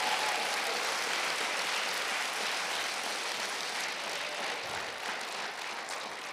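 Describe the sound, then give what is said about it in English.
Sustained applause from an audience for the East High rugby team of Youngstown, a dense, steady crackle of many hands clapping at once with no voices on top, holding loud throughout and easing off slightly at the end. “Give you a big round of applause to our young men of the rugby team of East High.”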